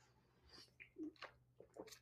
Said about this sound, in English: The second thing I want to cover off is, let me take a sip from my coffee cup.